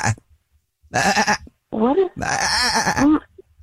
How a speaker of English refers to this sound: Why do I hear a goat or something? I don't understand what is going on.